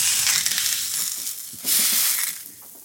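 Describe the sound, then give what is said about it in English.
A damp corn tortilla, given a splash of water, sizzles steadily on a hot surface as it is reheated: a bright crackling hiss with small pops, swelling louder about halfway through. No one speaks. “So when I reheat corn tortillas, I like to give it a little splash of water before it goes on a nice hot surface, because that kind of helps it steam and warm evenly.”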